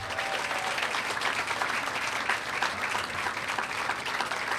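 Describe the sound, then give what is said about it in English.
An audience applauds steadily for the Cyclones coaches at a Cassidy athletic Hall of Fame induction, a dense wash of many hands clapping at an even, sustained loudness without pause or speech. “Let's give these Cyclones another warm round of applause for their effort.”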